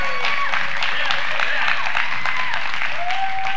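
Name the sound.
audience applauding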